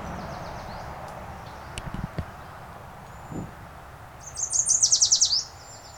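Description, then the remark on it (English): A warbler sings a few feet away, directly overhead, a quick run of bright, high, rising notes ending in a loud burst, with softer chips earlier over a quiet outdoor background. “There, this warbler's coming right up to me.”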